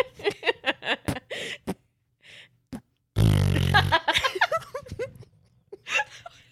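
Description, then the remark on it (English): A single loud, deep, low-pitched fart lasting close to a second, rumbling and buzzy, with people laughing and talking before and after it. “A baritone fart.”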